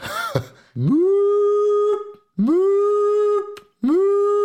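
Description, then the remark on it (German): A voice imitates an air-raid siren: three loud wails, each swooping upward in pitch and then holding a steady, buzzy tone for about a second before cutting off. “Genau, hier insertieren wir dann eine Spoilerwarnung in Form einer Sirene.”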